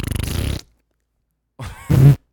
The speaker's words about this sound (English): And now we go into the fart section of the podcast. All right, go.